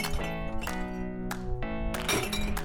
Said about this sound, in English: And a few days ago, I was able to find some therapy by breaking glass.